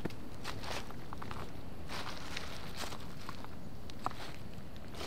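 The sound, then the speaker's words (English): Footsteps crunch steadily over gritty, uneven ground, a series of scuffing steps with rustling texture and no voices. “I can hear your footsteps!”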